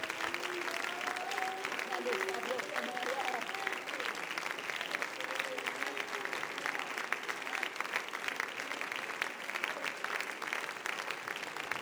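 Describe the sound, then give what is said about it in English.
A large audience claps their hands in sustained, dense applause to thank God after a prayer, with voices calling out and murmuring underneath, steady and fairly loud throughout. “Clap your hands and thank Him with your lips for just a few seconds tonight.”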